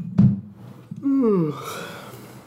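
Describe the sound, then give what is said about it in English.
A single yawn: a brief intake, then a long voiced exhale that slides downward in pitch before trailing off into breathy quiet. “Oh, I'm yawning.”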